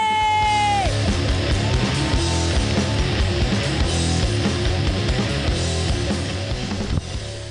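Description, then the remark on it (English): A single drawn-out, high-pitched "woo" from a man in the back of the balcony, held about a second before dropping off, then swallowed by a loud, dense wash of crowd noise and music. “Somebody booing me way in the back, in the balcony? Sir, what are you wooing or are you booing? I'm wooing.”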